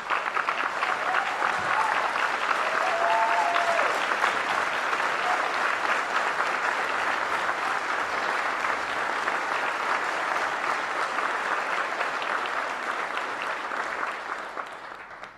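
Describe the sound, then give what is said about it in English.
A large audience applauds steadily and loudly for about fifteen seconds, a dense wash of clapping that holds at full strength and tapers only slightly at the end, with a few faint voices underneath. “and I ask you to give her a big round of applause.”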